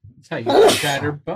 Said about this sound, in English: Bless you.